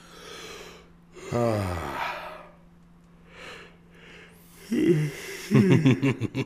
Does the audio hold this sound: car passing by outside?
no